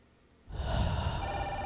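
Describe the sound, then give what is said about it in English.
After a brief hush, a classic red telephone with a big siren light on top, kept in the mayor's case, abruptly starts ringing, a loud, sustained, bright ring with steady layered tones that continues to the end. No one speaks. “Whose fucking phone is that?”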